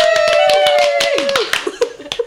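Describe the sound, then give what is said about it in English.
A small group in a small room claps for a couple of seconds to welcome a guest comedian, the claps quick and uneven, while a sustained whoop or cheer rises and then slides down beneath them before trailing into a few scattered claps. “I usually don't get claps in a small room like that.”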